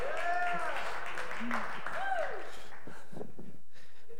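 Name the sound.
audience clapping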